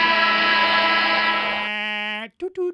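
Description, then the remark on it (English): A voice mimics a horn: one long, loud, buzzy blare held for about two seconds, then two quick, shorter honks. “Sound the horn.”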